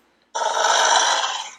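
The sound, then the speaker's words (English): A person imitates a beast's growl: one sustained, rough, throaty snarl, loud, lasting over a second before tapering off. No speech accompanies it. “And then the beast just kind of just growls at you once again.”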